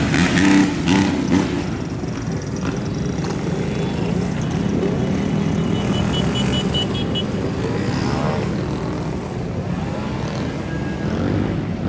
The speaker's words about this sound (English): Here comes a bunch of motorcycles.